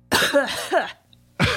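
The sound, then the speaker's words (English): Harsh coughing with a rough, voiced quality as someone spits out pieces of cotton: a long sputtering fit, a brief pause, then another cough starting up, with no talking. “covered in fuzz and dragging a long elephant trunk, coughing as he spits out a few errant pieces of cotton.”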